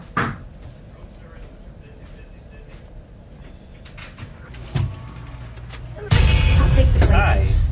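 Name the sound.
door being opened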